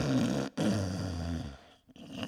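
snoring

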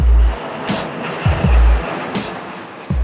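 airplane engine

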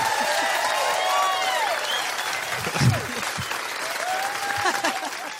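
audience applause

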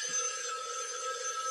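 telephone bell ringing

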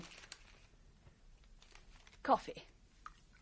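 newspaper pages rustling

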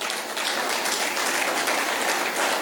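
audience clapping

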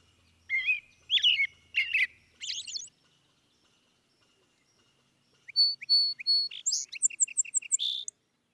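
songbird singing

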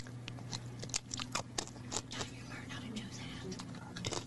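loud open-mouth chewing

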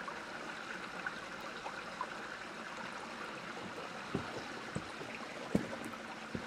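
river water flowing

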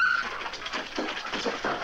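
dog whimpering

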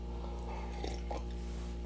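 sipping beer

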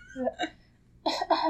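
cough

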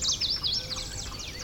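yellow warbler singing

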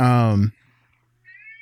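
cat meowing

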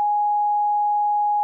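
censor bleep tone

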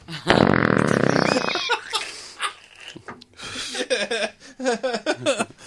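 fart sound

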